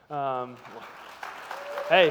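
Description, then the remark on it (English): An audience at a Sunday church service applauds in a steady, moderate wash of clapping. A drawn-out voiced shout opens it and another rising voice cuts in near the end. “I did not get an applause at the last service, so thank you.”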